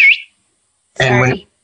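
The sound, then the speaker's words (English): A person whistles a brief, high, warbling note imitating ground penetrating radar, followed after a short pause by a loud, buzzy voiced tone lasting about half a second. “That was you whistling? Yeah, that's ground penetrating radar.”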